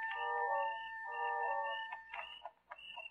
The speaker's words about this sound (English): The sound of the alarm clock we brought with us mingled with that of the crickets outside.